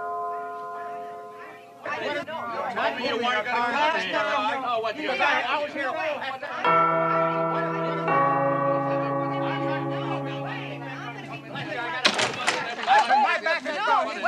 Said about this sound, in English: Look, Daddy, teacher says every time a bell rings, an angel gets his wings.